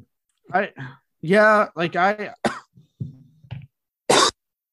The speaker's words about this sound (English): Sorry, I still have the coughing effects of fucking my COVID.